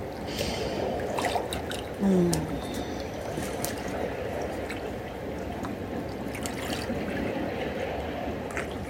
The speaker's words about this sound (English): Just taking in the sounds this morning, the sounds of the water.